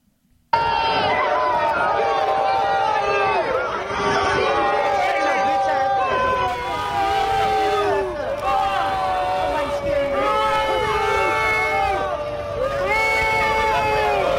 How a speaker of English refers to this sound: That sounds like the crowd at Pepino's when Boring Dean walks in.